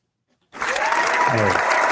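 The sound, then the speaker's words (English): After half a second of silence, a canned applause sound effect played from a soundboard cuts in abruptly and stays loud and steady, a dense wash of clapping with faint voices mixed underneath. “Well, I did an applause and then I did a toot.”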